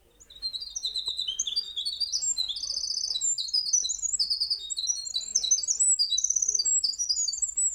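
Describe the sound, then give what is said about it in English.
A winter wren, a tiny brown bird, sings a long, rapid, unbroken cascade of high tinkling trills and buzzy warbles, bright and continuous for several seconds, with no talking over it. “Today, we're going to take a listen to the winter wren.”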